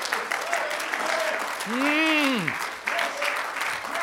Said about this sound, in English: I wish somebody clap your hands and believe that you've got the victory.